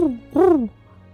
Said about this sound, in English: And the owl next to you.